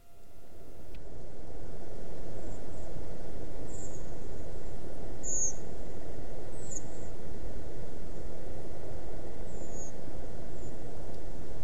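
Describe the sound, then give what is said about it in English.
Thin, high, drawn-out seep calls from redwings flying overhead come one at a time, scattered and fairly faint, over a steady low rumble of wind or traffic in the dark, recorded in October 2023. “That apparently was Red Wing Birds passing over where Alan had his microphones in October of 2023.”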